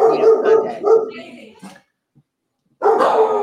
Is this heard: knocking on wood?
no